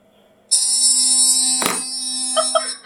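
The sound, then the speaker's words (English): A voice imitates an electric toothbrush with a steady, high-pitched buzzing hum lasting over two seconds, broken by a brief noisy burst midway and a few wavering pulses near the end. “Electric toothbrush. Make this sound.”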